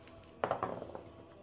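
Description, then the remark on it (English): A ten-sided die (d10) clatters across a hard tabletop in a quick burst of bright clicks and taps, settling within about a second; moderately quiet, with no talking. “What is this dice? It is a D10.”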